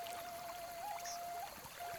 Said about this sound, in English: We need a 45-second intro of water sloshing.